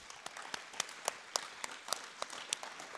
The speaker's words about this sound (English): So can we even just say a huge thank you and clap our hands for the team who prepared this place? Yeah.